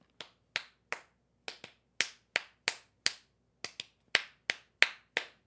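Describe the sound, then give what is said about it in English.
Hands clap a lively galliard dance rhythm, sharp bright claps grouped in uneven, galloping patterns of short and longer gaps, crisp and fairly loud with no voices. “And I'll just clap the rhythm a little bit.”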